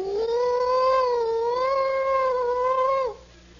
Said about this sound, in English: Have you ever had that feeling of hearing the sirens out there? And they come closer and closer and closer.